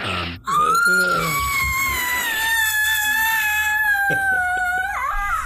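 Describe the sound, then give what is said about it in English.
A human voice imitates a caged creature, Teresa, screaming and wailing as she is hit with Eldritch Blast: a loud, drawn-out scream that slides into a wavering wail, holding one strained, high pitch for about five seconds before breaking off with a rough, gurgling end. “She screams and wails, and it is actually not very quiet.”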